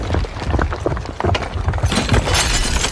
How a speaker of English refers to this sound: a loud sound of thunder was heard from the direction of the dome beneath which Peer Hamza was sitting. Cracked and shattered.